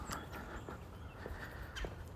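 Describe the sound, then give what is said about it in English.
A woodpecker taps in a slow, uneven series of sharp knocks, roughly a few per second apart, in a damp, mossy forest just after snow, against a steady outdoor background with a faint bird call. “Like this woodpecker that won't shut the fuck up.”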